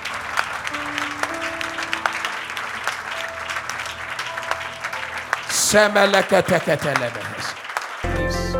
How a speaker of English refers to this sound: What a joy. What a joy. If that hand clap is going for Jesus, do it better.